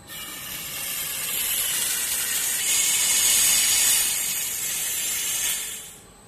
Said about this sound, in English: Inside my bottle, there is some incinerator ash mixed with water. And I'm going to fill the bottle up with carbon dioxide.